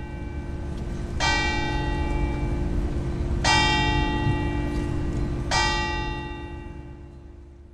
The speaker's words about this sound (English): As the ceremony unfolded and as we reached closer to midnight, there is a clock tower similar to Big Ben, not as huge as that. And as it struck 12 o'clock, people just remained silent and listened for it.